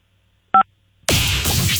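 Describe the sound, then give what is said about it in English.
A single short phone keypad tone beeps once, clear, as number 5 is pressed on a phone, then after a brief silence a loud, sustained burst of noisy rushing sound takes over. “All you have to do is press number 5 on your phone, and it remotely fires your ticket winner.”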